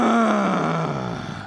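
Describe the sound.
A single drawn-out vocal groan imitating the grumpy "ugh" of a 9-year-old boy stepping out onto a cottage porch, starting loud and steady, then sliding slowly downward in pitch as it trails off over about a second and a half.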